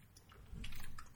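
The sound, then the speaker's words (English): A quiet sip of water: soft wet slurping and a faint swallow, with a low muffled rumble partway through and no talking. “Anyway, 1 second, I gotta take a sip of water.”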